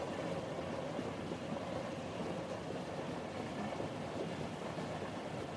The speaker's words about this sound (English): The vibrations of the train are strong, yet soothing. They even out into a relaxing hum as the train has reached a safe and steady speed for a long journey.